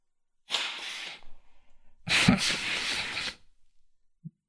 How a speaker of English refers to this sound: Give me a second. I gotta blow my nose.